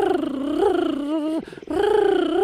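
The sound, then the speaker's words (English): A cheetah's high-pitched, buzzy purr, steady and tonal, rising and falling slightly, with a brief break midway before it resumes. It is fairly loud, with no talking. “And they have this sweet little, this high-pitched little purr they do, where it's deceiving because you just want to hug them.”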